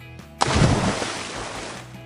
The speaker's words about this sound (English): Jumping into a pool.